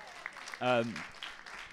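An audience breaks into a round of applause, a steady crackle of many hands clapping, with a single rising whoop or cheer ringing out briefly in the middle.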